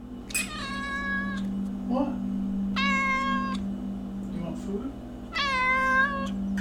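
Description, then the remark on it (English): A domestic cat meows three times at even intervals, each cry drawn-out and tonal. A steady low hum runs underneath, with faint murmurs between the meows. “We both have cats now.”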